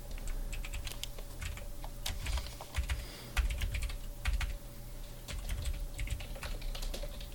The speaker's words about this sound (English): So I'm gonna leave all those keyboard noises in. Hacking.